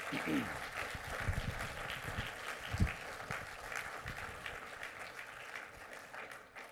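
An audience at a church service applauds steadily to thank the color guard. A dense wash of many hands clapping holds an even level for several seconds before tapering slightly at the end.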